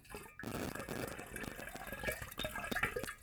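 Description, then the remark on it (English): Fizzy Sprite soft drink glugs and splashes as it is poured out in a steady stream down a stormwater drain, with bubbling and spattering throughout and no talking over it. “I'm pouring this out.”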